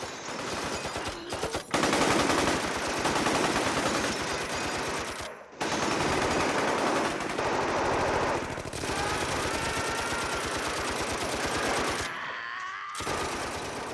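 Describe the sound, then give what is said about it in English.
Sustained bursts of loud machine-gun fire with blanks, rapid rattling shots in long strings with brief pauses between bursts, no voices present. “there are pictures showing me standing there with the machine gun”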